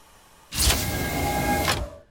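sound effect, door sliding open

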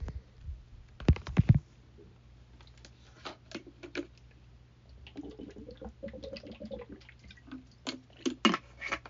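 food or drink, drinking water

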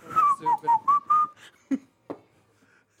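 human body sound, person whistling

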